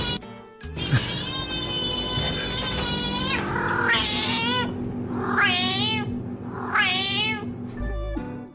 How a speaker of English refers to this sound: you can all work out where this cat is from based on its meow